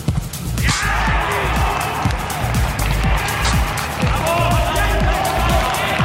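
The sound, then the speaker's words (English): A single hard thump of a football penalty kick, Robert Lewandowski scoring for Bayern Munich in a 2-0 Bundesliga win over Union Berlin, followed by hollow open-air ambience and scattered shouts echoing around a large stadium empty of spectators, played behind closed doors with no crowd noise. “In sport, this is how a penalty currently sounds in one of the biggest football leagues in the world.”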